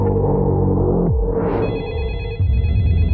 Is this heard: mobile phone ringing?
yes